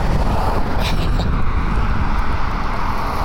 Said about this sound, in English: I can't tell if the wind's coming through or not. So it'll probably be completely unusable. But I have my hand over the microphone. And in theory, there should be no wind coming through.